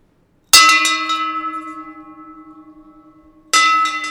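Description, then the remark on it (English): A large church bell rings out twice, loud, about three seconds apart, each clang leaving a long shimmering hum that slowly fades before the next strike, rung by pulling a bell rope in a tiny loft. “Stop ringing me bells!”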